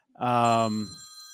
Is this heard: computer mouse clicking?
no